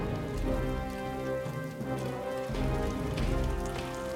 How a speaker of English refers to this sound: Yeah, I would not be standing out in that rain.